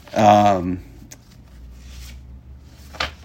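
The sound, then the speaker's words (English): A short vocal sound opens, then a couple of brief, soft rustles of paper follow as someone searches for another sheet of paper, the last one a little crisper, as if sheets are being shuffled. “where the fuck's that other paper? Oh, here it is.”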